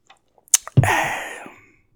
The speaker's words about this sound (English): Hold on a little second. Let me get a sip.